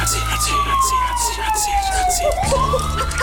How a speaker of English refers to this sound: And fire people. A lot of sirens, too, probably. Very good. That was a good impression of a siren.